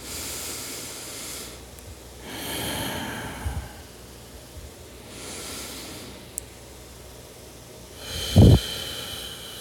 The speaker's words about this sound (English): So let's just start by relaxing, breathing in and out from the mouth to the nose.